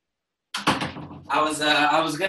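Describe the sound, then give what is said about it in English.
A door is pushed shut with a sudden clatter of movement, then a voice carries on talking as the door settles. “Oh, let me close the door.”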